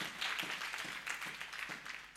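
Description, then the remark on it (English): A church audience claps hands together for the ministers, a dense, steady wash of many overlapping claps that carries on throughout, fairly subdued in level. “Let's clap hands for the ministers here.”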